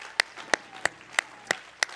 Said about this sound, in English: In Jesus' name, let's clap our hands to the Lord tonight. Clap your hands to Jesus.